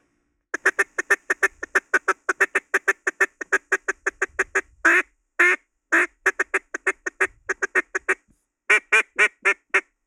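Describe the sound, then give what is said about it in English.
A duck call is blown at ducks about 80 yards out, pouring out a fast, steady string of sharp quacks, broken by a few longer drawn-out notes before a final short burst. No one talks. “But this is what I do when ducks is 80 yards broke.”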